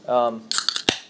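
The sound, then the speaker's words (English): A can of LaCroix sparkling water pops open: a short burst of fizzy hiss and clicks, then one sharp metallic crack, following a brief hummed voice sound. “I just opened a sparkling water from some.”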